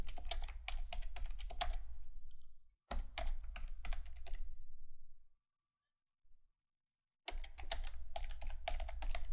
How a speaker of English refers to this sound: Hear all that typing? Sorry. I'll be done in a moment.